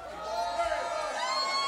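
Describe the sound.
A crowd at an R&B Sessions night cheers and screams steadily for a performer, many high voices blending into a loud, continuous roar that holds at the same level throughout.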